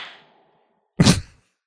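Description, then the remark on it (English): A soft fizzing hiss fades out, then after a pause a single short, wet splatter of beer foam hits the floor, a broad splashy burst lasting under half a second. “You can hear the foam hitting the floor.”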